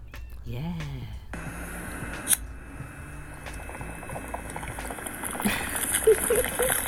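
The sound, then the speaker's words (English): Continuous bubbling and gurgling of water through a bong as a man takes a deep hit, a steady churning rattle lasting several seconds, with a short vocal sound near the start. “No, he's not drinking water, you know. He's taking a nice deep hit.”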